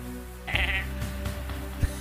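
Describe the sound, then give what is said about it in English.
A person's voice mimics a goat, letting out a single wavering, nasal bleat, followed by a short stretch of quieter vocal sounds and a brief bump near the end. “That was almost like goat level.”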